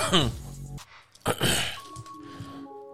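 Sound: coughing and throat clearing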